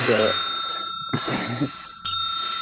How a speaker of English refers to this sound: When you hear that sound, that means we'll transition to a new scene, including in the first three. I'll just call the edit with the bell. So after like 2 minutes for each pair, I'll ring the bell.